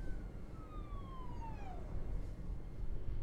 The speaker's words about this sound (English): That's an ambulance, actually. Not for me. Which is good.